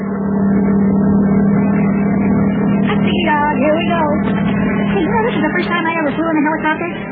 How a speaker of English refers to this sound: Hey, you know, this is the first time I ever flew in a helicopter. This seems to be much different than flying in an ordinary airplane. This thing flies a lot faster than I ever thought it would.